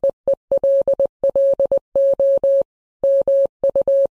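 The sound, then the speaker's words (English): Morse code beeps: a steady single-pitched tone keyed on and off in quick short dots and longer dashes, clear, with brief pauses between letter groups and no voices. “And speaking of geeky, here's one for the Morse code fans.”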